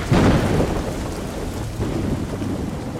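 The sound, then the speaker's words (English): Thunder rumbles low and heavy through steady rain during a summer storm, with a loud roll near the start that eases into a sustained, grumbling backdrop. No voices. “When a summer storm brews, this sound reminds us of nature's power.”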